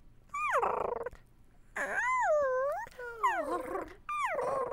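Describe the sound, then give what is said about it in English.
A voice imitates a small creature snuggling in: four whiny cooing sounds that swoop up and down in pitch, separated by short pauses, with no talking. “So, like, if the little creature is snuggling in, maybe it's a...”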